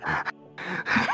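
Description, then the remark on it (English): A voice imitates a dog's panting with a few quick, breathy huffs and gasps in a rough rhythm, fairly loud, with a brief pause in the middle. “And he's like panting like a dog, you know, like.”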